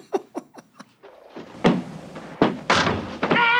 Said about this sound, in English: in a hotel and that someone opens a bathroom door and Engelberg's on the toilet eating a bucket of Kentucky Fried Chicken.